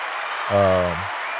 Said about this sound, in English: Hello. No, that wasn't a joke. That was only applause.